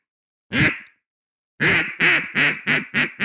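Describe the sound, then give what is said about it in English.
A duck call imitates a gadwall duck quacking: one loud, raspy quack, a short pause, then a quick run of five rhythmic quacks, clear with no talking. “Can you do a duck? Can you do a gadwall?”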